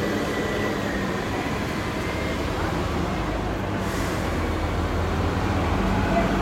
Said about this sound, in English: Comes our bus, guys. Our bus is coming.